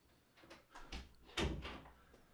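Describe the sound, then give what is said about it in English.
A home studio door, right beside the laundry, being opened with a series of soft creaks and rattles building to a firmer thud partway through, then settling into quiet. “And I opened the door to find her frozen with a look of horror on her face.”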